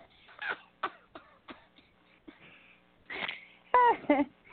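A sharp sneeze bursts out after a few short breathy huffs, followed by a brief voiced sound trailing off at the end.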